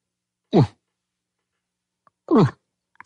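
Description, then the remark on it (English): A person voices two short, gruff imitations of a bull elk call, each a quick downward-sliding grunt, separated by a pause of nearly two seconds, with no talking. “Now do a bull call.”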